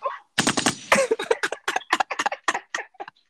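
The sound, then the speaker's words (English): A rapid string of sharp, punchy gunshot bursts fires off loud for about three seconds, sounding like a voice imitating machine-gun fire with quick pops in an uneven rhythm. “Gotta shoot the gunshot.”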